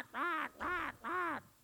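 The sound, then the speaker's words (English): Three loud, harsh caws in steady succession, each drawn out with a rising-then-falling pitch, made by a human voice imitating a crow, with no other sounds. “That's a pretty good crow noise, isn't it?”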